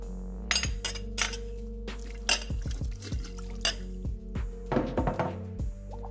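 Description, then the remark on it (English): Glass bottles flying from various shelves clink and clang against one another in a quick, irregular flurry of bright hits as they empty into a cauldron, with a low steady hum and faint liquid drips beneath, moderately loud. “The bottles, which come flying from various shelves, crash and clang into each other as they race to be the first to empty their contents into the cauldron.”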